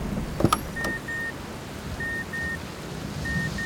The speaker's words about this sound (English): Oh, a car? Of course, a car.